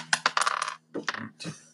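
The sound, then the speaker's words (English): Dice clatter and tumble across a hard table in a quick rattling burst during a tabletop game, then settle with a few shorter knocks and skitters, fairly crisp, with no voices. “Roll your dice. Come on, you have to roll it big.”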